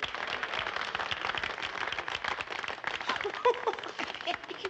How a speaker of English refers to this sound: How can they clap for that crook? Don't forget, Dick, this is a hometown crowd, and Joker's from Gotham City.